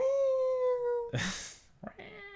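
A cat lets out a long, drawn-out meow, then a brief breathy rush of noise and a sharp click, followed by a second, shorter meow. The sounds are moderately loud.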